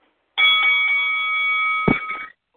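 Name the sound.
bell sound effect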